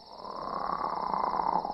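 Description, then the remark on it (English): A short electronic hum from an alien's voice translator starting up again, a steady buzzing drone with a thin high whine over it, swelling slightly at the start and holding for under two seconds, with no talking. “There was a brief hum as the alien's voice translator started up again.”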